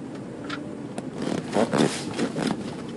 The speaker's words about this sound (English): Okay, I hope you like the car sound of the car wash.